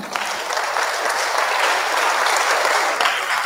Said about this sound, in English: I thought somebody was clapping.